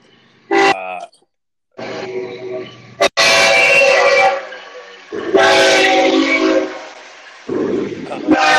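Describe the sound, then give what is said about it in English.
A long train rumbles past, loud and continuous, with several drawn-out horn blasts sounding over the roar of the cars. “This is the longest train I've ever seen in my life.”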